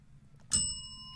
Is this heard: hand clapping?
no